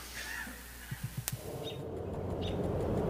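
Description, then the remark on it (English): Faint, scattered bird chirps from high up in a tree sound over a hissy outdoor background, with a few soft low thumps and a sharp click partway through, as a man records the bird sounds up in the tree. The calls are brief. “I think he was recording bird sounds high up in a tree.”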